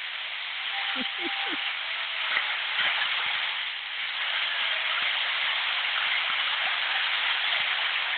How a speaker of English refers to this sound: A lot more. Big applause. They like that.